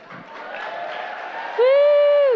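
A crowd claps and cheers steadily for a couple of seconds, then a single loud, sustained whoop rings out close by over the applause before trailing off.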